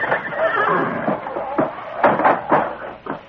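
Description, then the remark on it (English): A horse in a stable neighs, a loud, wavering whinny broken into several shaky bursts over a few seconds, with a slightly muffled, boxy tone. “What about truck? What about horse? I want to see Firefly stall.”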